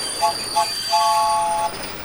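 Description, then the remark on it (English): A train rolls fast into a station, its wheels giving off high, steady squeals with short bursts and one longer screech over a constant rumbling hum, fairly loud. “That train's coming into the station like a friggin' asteroid!”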